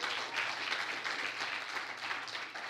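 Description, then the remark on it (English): A crowd applauds steadily for a couple's 24 years of marriage, many hands clapping in a dense, continuous wash that holds at an even level throughout, with no voices rising above it. “I know you're clapping for her.”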